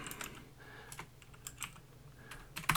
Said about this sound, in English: The return of the really clacky keyboard.